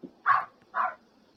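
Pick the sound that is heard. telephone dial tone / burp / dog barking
dog barking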